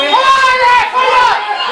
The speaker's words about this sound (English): that Tipperary crowd are rather irate at referee Justin Heffernan here.